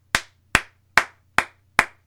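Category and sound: crowd, applause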